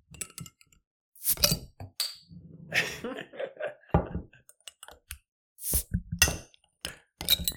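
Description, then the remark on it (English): Several sharp glassy clinks and knocks of drinking glasses touched together in a toast, scattered irregularly over a few seconds, with a brief murmur of voices and some handling noise between them. “Hey, thank you. All right. Cheers. Cheers.”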